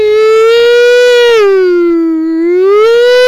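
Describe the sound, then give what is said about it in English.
A voice imitates a police siren with one loud, sustained wail that dips lower in pitch and then climbs back up, with no other talking. “Okay, the police are coming. The police are coming.”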